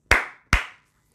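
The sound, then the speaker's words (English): Two sharp hand claps ring out, evenly spaced about half a second apart, each with a brief ringing decay, then silence. “Let everyone clap hands like me.”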